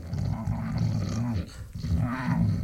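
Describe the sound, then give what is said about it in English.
A voice imitates loud snoring with a harsh, growling rasp, low and rumbling, in two long drawn-out breaths separated by a brief dip. “What doesn't help my argument is that I do snore like two... Wookiees having sex.”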